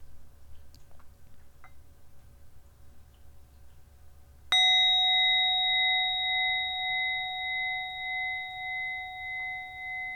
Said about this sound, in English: I invite you to join me in sealing this meditation with the sound of the bell.